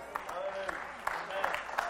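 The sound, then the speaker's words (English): A crowd claps in a steady, dense patter with sharp individual slaps scattered through, over a murmur of voices and some brief vocal tones rising from the audience. “You're clapping, but half of you go to church.”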